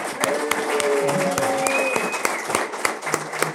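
An audience claps steadily in a dense, continuous burst, with sharp individual hand claps standing out and a few faint voices and whistle-like tones mixed in.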